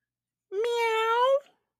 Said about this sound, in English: Jack and Annie started down the dark hallway, following the cat's meow.